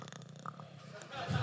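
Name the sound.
voice imitating a snore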